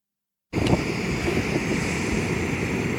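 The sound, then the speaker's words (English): A camping stove heating water roars steadily after a brief silence, its burner hissing with a low, rumbling whoosh and a faint whining tone. The sound is loud and constant, with no talking. “Got the stove going. Heating up water.”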